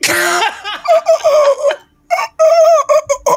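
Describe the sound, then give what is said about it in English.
A person does a loud chicken impression, a string of squawking clucks and warbling cackles with a short pause midway before the clucking resumes. “There's a ghost chicken.”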